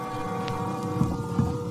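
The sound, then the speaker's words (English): A boat coming into port at a little town on the coast of Martinique in the French West Indies in the early evening: a steady low engine drone with a faint tonal hum over splashing water, with two soft thumps near the end. No one speaks. “At a little town on the Martinique coast, a boat has just come into port.”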